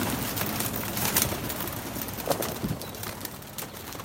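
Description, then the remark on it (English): Pigeons coo softly at a scruffy rooftop coop in Beijing in the morning, as their keeper lets them out for their twice-daily flight, amid a dense outdoor hum, with a few brief flutters and low throaty calls rising now and then over steady background noise. “He keeps pigeons on a rather scruffy coop.”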